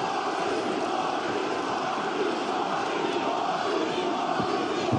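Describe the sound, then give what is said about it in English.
A huge crowd at an All Elite Wrestling event roars in a sustained, dense wall of cheering and shouting as Jeff Hardy arrives, loud and steady throughout with no individual voices standing out. “This crowd has had an out-of-body experience just like we have.”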